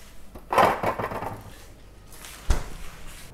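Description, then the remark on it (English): A knife cuts 75 grams of butter into small pieces on a board, a soft scraping slice followed by a sharp tap of the blade against the surface, then a quieter stroke. Moderately loud, with no talking. “So, use 75 grams of butter, and I'm cutting this butter into small pieces so it melts faster.”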